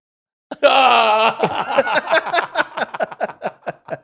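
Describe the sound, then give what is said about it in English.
A voice imitates a ghost's moan: a loud, sustained wavering wail that breaks into a series of shorter rhythmic pulses, fading out over about three seconds. “And then say somebody moves into that apartment, you know, a year down the way, And then, you know, I hear this ghost. What does it sound like?”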